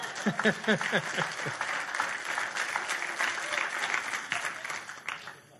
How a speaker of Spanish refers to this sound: El coro está pegado. Dale un aplauso al Señor por ese coro.